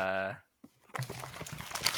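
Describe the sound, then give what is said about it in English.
A sheet of paper is pulled out, rustling and crinkling for about a second, following a short burst of voice and a faint click. “Let me get my piece of paper out here.”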